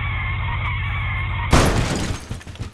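A truck's low engine rumble drones steadily, then a sudden loud crash bursts in with shattering glass, followed by scattered tinkling and clattering debris as the noise trails off.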